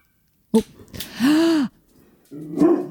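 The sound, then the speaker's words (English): A small dog across the road yaps a few times: a sharp short bark, then a drawn-out, rising-and-falling yelp, then another burst of yapping, moderately loud with a faint background between calls. “There's a yap yap across the road.”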